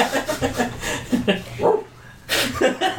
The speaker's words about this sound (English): No, wait. It's a dog.